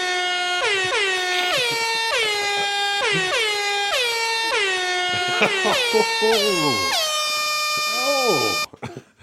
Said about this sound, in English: Oh, thank God it stopped there. I thought it was going to go on forever. Oh, the old Lang Syne air horn is back. It's great to have it back.